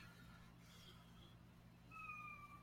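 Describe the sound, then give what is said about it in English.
A cat meows, a soft drawn-out call followed by a clearer, steadier meow near the end, both faint against a low background hum with no one talking. “Sorry, I have to take care of my cat.”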